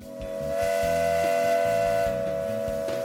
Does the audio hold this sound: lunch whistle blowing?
yes